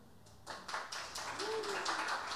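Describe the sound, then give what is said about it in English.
An audience applauds for contestant number one in a contest scored by applause, a steady patter of claps that builds after a quiet start and holds through to the end, moderately soft, with a faint voice-like tone briefly underneath. “Number one. Applause.”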